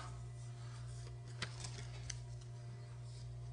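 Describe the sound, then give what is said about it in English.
Soft, faint rustling of paper slips with written answers being shuffled by hand, a few brief crisp ticks over a steady low hum, with no voices. “Shuffling these up. I wrote the real answer on one of these pieces of paper, so you're not getting any clues.”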